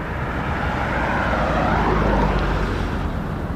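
A steady, loud roar of traffic on the Huey P. Long Bridge over the Mississippi River, with deep engine rumble and tire hiss swelling slightly as vehicles pass; no one speaks.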